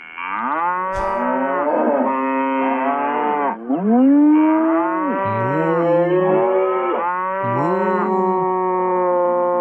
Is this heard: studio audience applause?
no